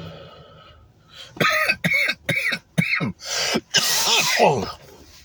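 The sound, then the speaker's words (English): A loud coughing fit from smoking cannabis: about five sharp, rapid coughs in a row, followed by a longer harsh, raspy hacking burst, after a quiet low murmur at the start. “and I just want to point out my professionalism while I'm unprofessionally coughing off of cannabis.”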